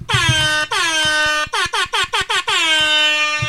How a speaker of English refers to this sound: Refresher on the buzzers? No, do we want to remind everybody this is mine?